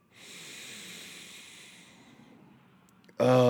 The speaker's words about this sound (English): Oh, you hear that? That is pure 70% nostril clear airwaves. All right? No stuffiness, no runniness.